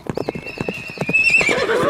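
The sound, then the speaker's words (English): A runaway horse, its reins let go, runs with hooves clopping in a quick, steady rhythm while a long, high-pitched neigh rises over them, growing louder toward the end; fairly loud, with no talking. “You should never never let go of the reins of an unfamiliar horse, or a familiar one.”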